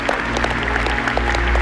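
A large crowd at Lakewood claps steadily for people standing all over the building, many hands blending into a dense, continuous patter, with a low sustained hum running underneath throughout.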